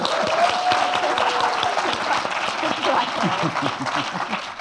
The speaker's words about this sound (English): Please, applause